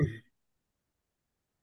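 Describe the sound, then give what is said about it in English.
A single short, husky cough or throat-clear right at the start, followed by silence. “Sorry, had a cough.”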